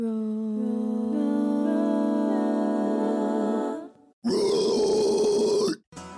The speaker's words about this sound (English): That roar was … from death metal band …. … is well known for a fast-paced machine gun-like distortion style, and I have been super interested in the origin and the development of this technique.